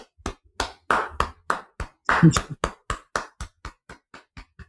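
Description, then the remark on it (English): A quick run of sharp hand claps, around sixteen or seventeen in a steady rhythm, loudest near the middle and growing fainter and thinner toward the end. “Yeah, so that's clap.”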